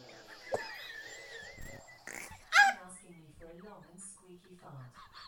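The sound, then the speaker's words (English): A squishy fart sound effect played by an Alexa smart speaker on request: wet, sputtering squelches that wobble in pitch, with a louder squeaky burst partway through before trailing off into softer bubbly rasps. “Alexa, play a squishy fart. Here comes a squishy fart.”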